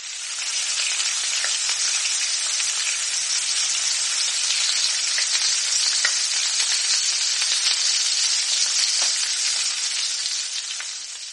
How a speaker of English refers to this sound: Take a deep heavy bottom pan and add about 2 inches of oil, which is enough. Fry until crisp and golden for about 2-3 minutes.